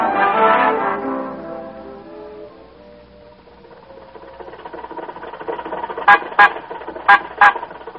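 A car horn honks four short, sharp blasts in two quick pairs, loud, at a red light, following a ringing tone that fades away over the first few seconds.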